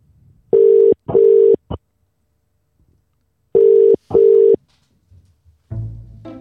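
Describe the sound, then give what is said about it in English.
A telephone ringback tone on an outgoing call: two cycles of the double-burst 'brr-brr' pattern separated by a pause, clear and steady, before a voice starts speaking at the very end. “And so I just want to play the phone call.”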